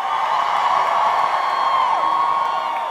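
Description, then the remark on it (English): A crowd at Lori's Roadhouse on a Saturday night erupts in loud, sustained cheering and applause as B105 radio hosts walk on stage, a dense wall of whoops and yells that holds steady throughout without any pause. “Listen to that eruption of applause”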